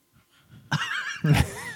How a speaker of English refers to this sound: We're breathing really heavy in the microphone again, I think. You me or me? You? Do you guys hear it? I don't know. I keep hearing it in my microphone.